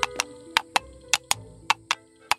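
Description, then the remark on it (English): Hollow, sharp knocks of coconut shells clopped together like horse hooves, about ten crisp hits falling in uneven pairs with a trotting rhythm. No voices. “It's just me playing with my coconuts.”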